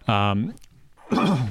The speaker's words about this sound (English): yep, I'm still coughing, people.